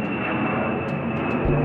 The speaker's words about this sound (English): B-52s were always flying over Billy's farm.